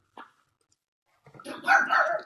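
A single sharp yip, a pause, then a burst of excited barking and yipping from dogs along a road, yipping at people passing by, growing louder and more frantic toward the end, with no one talking.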